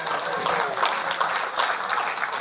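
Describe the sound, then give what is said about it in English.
An audience claps steadily, a dense wash of many hands applauding at an even loudness throughout, with no pauses. “Thank you for clapping because you don't even know what I did yet, but...”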